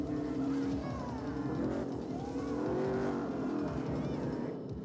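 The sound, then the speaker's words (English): Loud motorbike engines roar and rev continuously, their droning pitch rising and wavering as they draw close, filling the whole stretch without a break. “Here they come on their motorbikes.”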